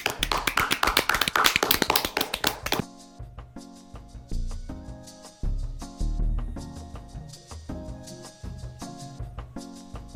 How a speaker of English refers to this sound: Okay, wait, let's applause. Bye. We have to end on the applause.